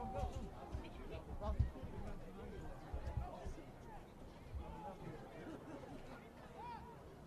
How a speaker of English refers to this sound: Little crowd still buzzing after their team has scored another touchdown.